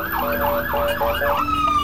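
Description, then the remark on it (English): A loud siren from Bibi's convoy wails in rapid rising-and-falling cycles, about four sweeps in under two seconds, then settles into a steady tone over the rumble of road traffic on Gaza Street in Jerusalem. “Bibi's noisy convoy that would wake us every morning.”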